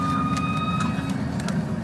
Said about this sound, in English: A jet foil is like a regular ferry suspended in the air on like a blade, so it goes really fast